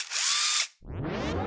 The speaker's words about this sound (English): Because I love using my drill.